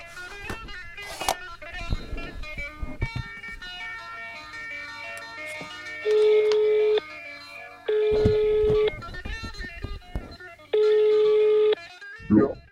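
Three long, steady ringing tones of an outgoing phone call to a person who held a high-ranking position in Swedish counterterrorism repeat at even intervals, clear and fairly loud over a soft humming musical background, with no one talking.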